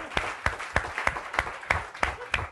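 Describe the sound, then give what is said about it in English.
Audience applause in a slow, even rhythm, about eight distinct claps spaced evenly over a couple of seconds, moderately loud, with no talking. “I think you've laid out, like, all of the really true practical reasons, and as your round of applause shows, that, you know, we're on your side.”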